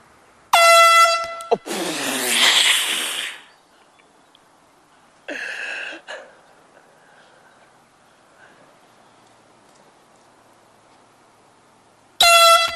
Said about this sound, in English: Okay, this is called the golf course air horn. When people tee off, when they're coming down with their swing, we're going to blow these air horns.